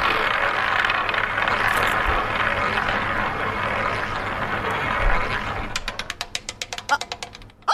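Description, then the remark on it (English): A roulette wheel spun in a game whirs steadily for several seconds, then breaks into a series of sharp clicks that gradually slow and space out as the wheel winds down, stopping on number five. “Spin it, Cat. Let it go.”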